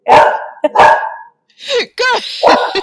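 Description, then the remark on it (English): Pet dogs bark loudly: two sharp, rough barks, a brief pause, then a run of higher, whining yips and barks. “now my dogs are being annoying, so.”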